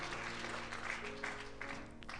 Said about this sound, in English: Hand clap, please. And come to the front. We're all family here. I'm your brother in Christ. Come on, you can give them a better hand clap than that.